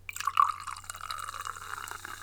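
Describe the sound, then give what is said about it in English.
Fizzy Amstel beer is poured into a glass, a steady gurgling stream with a fizzing, crackling hiss over a low background hum, lasting about two seconds with no talking. “I've got a rather fizzy beer with me right now, but”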